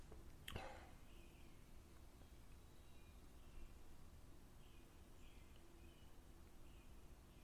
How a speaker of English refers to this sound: This place is not without its merits. You can hear the birds. That's nice. Isn't it? I like birds. Everybody likes birds.